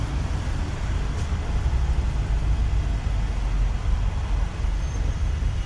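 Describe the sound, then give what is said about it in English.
A car's engine hums steadily with a low, continuous rumble as it drives slowly at an even pace across a parking lot, with no voices and no sharp sounds over the drone. “I'm going from one side of the parking lot to the other side of the parking lot so that I can creepily sit inside my car”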